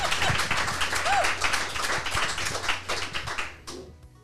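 A crowd claps steadily in a dense, crackling wash of many hands at a stop of the Enneagram Journey Toward Wholeness Tour, with a brief whoop rising through it before the applause thins out and fades in the final second.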